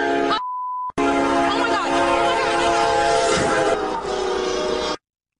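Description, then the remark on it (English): A loud train horn blares in one long, sustained chord lasting several seconds, just after a short electronic beep, then cuts off abruptly. “Oh, wait, that's a real train.”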